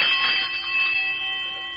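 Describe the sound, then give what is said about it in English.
A castle bell rings out in one loud, sustained metallic peal, its bright overlapping tones holding steady for under two seconds before fading slightly, with no voices. “And so I stained my face brown and black, put on some dirty old rags, and rang the castle bell.”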